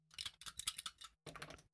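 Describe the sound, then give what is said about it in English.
Dice are rolled for an initiative check in a tabletop role-playing game, rattling and clattering in quick, dense bursts of small hard clicks, pausing briefly and then rattling again, fairly quiet with no voices. “Let me just get my dice out.”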